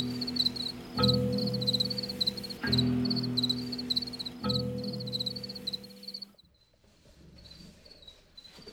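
A chorus of male crickets in a colony chirps steadily in overlapping, interlocking polyrhythms, joined by deeper throbbing calls that repeat roughly every two seconds before the sound thins out near the end.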